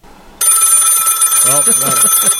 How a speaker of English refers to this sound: I'm so excited when the phone's ringing. Yeah, it really is.